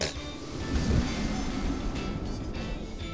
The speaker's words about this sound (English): What was that? Sounds like wind.